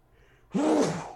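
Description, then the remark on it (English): A single sneeze bursts out suddenly after a quiet moment, a loud, breathy, partly voiced blast that fades over about half a second. “Bless you.”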